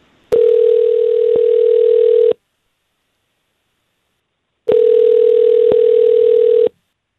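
A phone line ringing on an outgoing call: two long, steady electronic rings, each about two seconds, separated by a pause of silence. Loud and close, with no voices.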